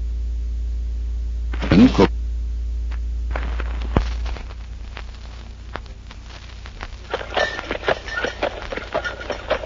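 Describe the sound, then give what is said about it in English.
Horse hooves clip-clop at a steady, uneven pace, with the rattle of a horse-drawn milk wagon delivering milk in 1896 growing busier toward the end; a low hum sits underneath at first, and no one speaks. “In the year 1896, milk was delivered in a horse-drawn milk wagon.”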